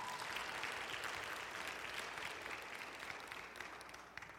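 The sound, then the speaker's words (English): An audience breaks into sustained applause, a dense, steady clatter of many hands clapping at an even loudness for several seconds, with no voices rising above it. “So y'all give him a round of applause in a little bit.”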